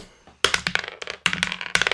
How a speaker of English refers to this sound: Yeah, grab dice. Let's roll.